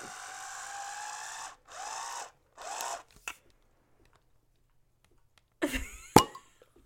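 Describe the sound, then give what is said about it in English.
An electric wine bottle opener whirs in three steady motorized bursts as it uncorks a bottle of wine, ending with a small click; after a quiet pause comes a brief clattering rattle and a sharp clink. “We need to get, like, a different wine bottle opener for the show, just so I'm not using, like, an electric one constantly.”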